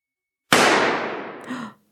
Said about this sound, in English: A gunshot is heard inside the room. Ooh. They all hit the deck,